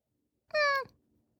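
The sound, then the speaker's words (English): A single short, high cat meow rings out clear for about a third of a second, then fades into quiet. “That was the cutest little meow noise.”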